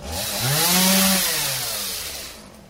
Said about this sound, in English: Buzzsaws working hard. The storm that raced through the Murray Hill section of Queens uprooted gigantic trees. This one fell on top of a house on 41st Avenue.